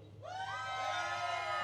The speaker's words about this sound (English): If you like …, yell.